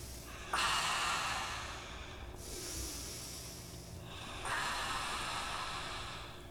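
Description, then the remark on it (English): Airy nasal breaths whoosh through the nostrils in three long, hissing passes, inhale and exhale alternating with brief pauses between them, with no talking. “Isolated nostrils, east, west, follicular filtration, flesh caves, breathing, mucoid silos, or air storehouses.”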